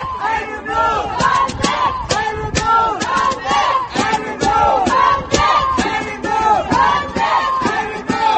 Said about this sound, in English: protesters attempted to reach senators by screaming through a conduit. Yeah, it sounded like this.